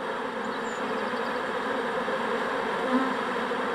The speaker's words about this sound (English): Bees. I don't know what else that could be. Okay. Except bees. Okay. Oh, those are bees.